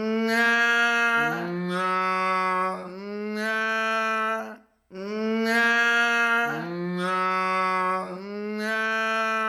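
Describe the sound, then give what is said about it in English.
Loud hippopotamus calls: long, buzzy, harmonic tones that step in pitch across a few sustained segments, then break briefly and repeat the same sequence again. No talking. “I didn't hear any response from the hippo. I turned up the volume. And suddenly, the hippo heard.”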